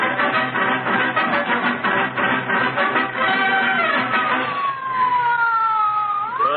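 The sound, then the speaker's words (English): A loud ambulance siren wails continuously as the ambulance takes a patient to hospital, its pitch gliding slowly downward and then sweeping back up near the end, heard alone without any talking. “Call an ambulance. This is serious.”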